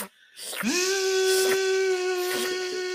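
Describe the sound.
A person's voice imitates a vacuum cleaner, rising quickly into a steady, buzzing drone that holds one pitch for a couple of seconds over a breathy, hissing rush, fairly loud.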